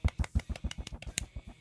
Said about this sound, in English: He deserves a golf clap. He does.